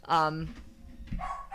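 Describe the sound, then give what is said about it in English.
A dog barks twice, a loud, tonal bark followed about a second later by a shorter one, with a low murmur of background noise between them. “We're going to listen to the dog bark for a second and then it'll stop.”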